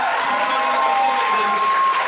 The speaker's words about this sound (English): There's no point in stopping those applause. Guys, keep applauding as you walk in. Keep this going.